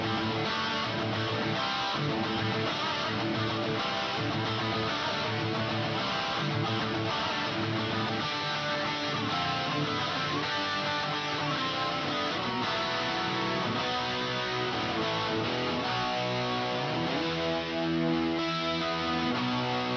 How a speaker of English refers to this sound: when you listen to this riff by itself